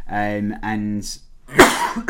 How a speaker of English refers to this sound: And coughing his guts up now. There's a proper cough going on. Because he's got all upset and smokes too many cigarettes.